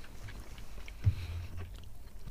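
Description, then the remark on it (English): Soft chewing of a chewy toffee-flavoured Mentos candy with an apple centre, a steady run of moist mouth sounds with one slightly louder bite partway through, no talking. “Until you get to the very centre and chew on it.”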